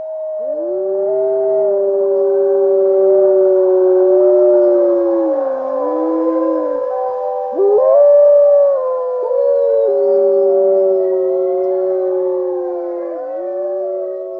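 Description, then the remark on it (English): Several voices howl together like wolves in a howl for Kavi, long sustained wavering tones overlapping loudly for about fifteen seconds, with pitches sliding up and down and a brief break midway. “But yeah, so with that, you know what, before we finish, let's have a howl for Kavi.”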